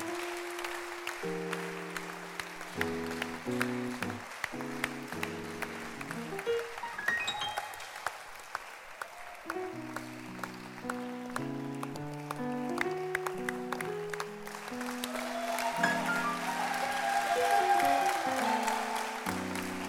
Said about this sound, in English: Welcome. The rest of you, clap for them. Keep clapping for them.